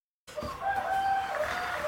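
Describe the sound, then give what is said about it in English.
A rooster crows once on a farm, a drawn-out, strained call that begins abruptly after a brief silence and holds steady to the end. It sounds clear, with no talking. “You'll notice through this episode that the recording picked up the wonderful background noises of farm life, from chair creaks to crickets and roosters.”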